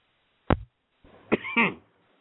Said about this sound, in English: Sorry, guys. I keep deciding to cough way at the wrong time.